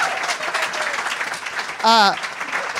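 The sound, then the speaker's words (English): An audience claps steadily in a dense, continuous wash of applause welcoming a guest, and a short, loud whoop or cheer rises above it briefly near the end. “Give it a big round of applause.”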